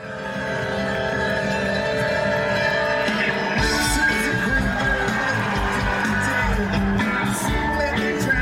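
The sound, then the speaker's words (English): A crowd cheers and whoops continuously over a steady, humming musical backdrop, the shouting growing denser and louder about halfway through and staying loud to the end. “Sounds like you hear everyone cheering.”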